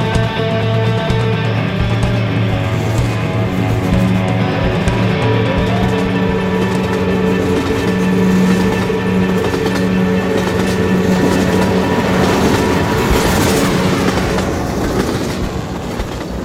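A moving train rumbles loudly and steadily, its wheels clattering in rhythm while percussion plays along aboard, blending hits and metallic tones into the continuous mechanical roar, with no talking.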